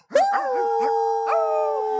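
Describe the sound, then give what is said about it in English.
Several voices in a crowd howl together like a wolf pack, long sustained wavering tones that overlap and hold steady for about two seconds, loud, with no speech. “And with that, the crowd, of course, howls.”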